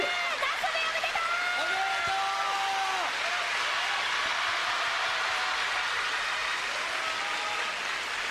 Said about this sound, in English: Applause, Nasubi, congratulations.